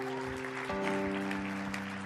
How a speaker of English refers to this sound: So, man, let's give this guy an applause.